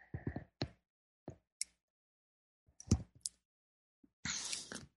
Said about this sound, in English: So check this out. I can take a sip of my tea here.